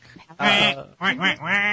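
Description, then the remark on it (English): A duck quacking sound effect bringing on Howard the Duck: one long, nasal quack followed by a rapid run of three shorter quacks, loud with no voices. “Let's bring on the Duck. Howard the Duck on the board.”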